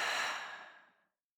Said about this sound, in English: And we're going to take a deep breath in, hold that at the top, and breathe out. So breathing in, holding that insight at the top, and breathing out.